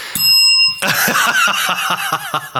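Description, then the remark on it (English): A bicycle bell rings loud: one bright, sustained ding, then a quick run of rattling rings repeating in a steady rhythm until the end. No voices. “That bell means that we are done talking about that topic.”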